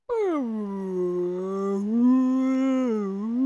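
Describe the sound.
A human voice imitates a whale call, holding one long, continuous, wavering moan for about three seconds, dipping and rising slowly in pitch. It is fairly loud, with no other sounds.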